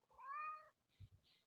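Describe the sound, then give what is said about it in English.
A single drawn-out cat meow, fairly loud, followed by a couple of soft low thumps and faint rustling. “We didn't ask you, kitty cat.”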